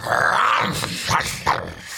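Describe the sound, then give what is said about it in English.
A hunting dog growls, a low continuous snarl followed by a few sharp snapping bursts as it bites a robber on the leg, with no talking. “The hunting dog bit the robber on the leg.”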